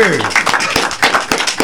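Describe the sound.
A few people clap in quick, uneven bursts, sharp claps layered over cheering voices and chatter throughout.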